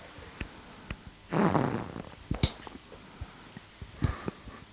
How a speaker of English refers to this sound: just farted. That's not very ASMR of you.